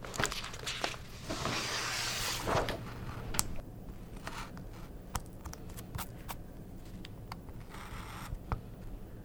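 A blade scores thin lines into a cut-paper art piece by a Japanese-American artist, forming wisps of detail in the overalls of a child's figure: a steady scratchy rasp for a couple of seconds, then a sparse string of crisp, irregular ticks and clicks as the cuts continue, with no talking.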